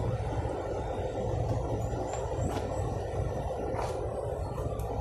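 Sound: trucks driving past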